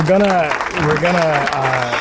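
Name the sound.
audience applause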